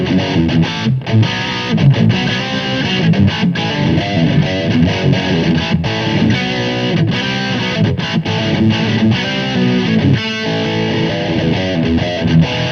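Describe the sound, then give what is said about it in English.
Loud, crunchy distorted electric guitar played through a small Marshall tube combo amp, chugging chords with brief choppy breaks, dense and continuous for the whole stretch with no voices. “Which Small Marshall Tube Combo is the Best?”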